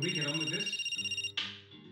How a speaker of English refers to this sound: I sat down and put the TV on. I was channel-hopping in a kind of sulk at life when my phone rang.